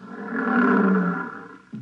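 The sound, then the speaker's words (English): Lions about 15 feet away roar in a deep, rumbling bellow that swells, holds for over a second, then fades, with a second low roar starting just as the first dies away. No voices. “Oh, here come the lions.”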